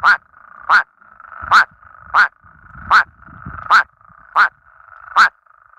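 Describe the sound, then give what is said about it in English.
Male plain spadefoot toads in ponds give eight short, nasal, duck-like quacking calls in a steady, evenly spaced series, loud over a faint continuous chorus hum, with no one talking. “These ones actually sound like little ducks. They make these short quacking noises.”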